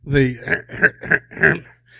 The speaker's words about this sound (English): But in 1888, I hear you clearing your throat over there, checking up on me.